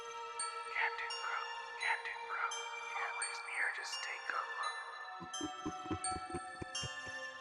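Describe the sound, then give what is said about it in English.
Over a phone, a distorted, breathy whispering voice repeats the same phrase again and again over a steady ringing drone, giving way to a run of quick rhythmic thuds near the end. “Then the phone sounded like it hit the floor, and all I could hear was a terrible, distorted voice whispering a line over and over.”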